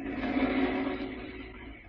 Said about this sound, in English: A low, rambling cottage is situated along a lonely strip of sandy beach. Even inside the cottage, you can hear the distant boom of the waves and the low moan of the wind along the dunes.